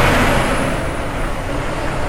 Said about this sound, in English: Gotta wait till this truck pass because it's been annoying.